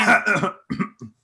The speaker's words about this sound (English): Can you guys hear it when I clear my throat?